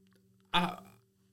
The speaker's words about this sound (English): Ooh, I got the hiccups.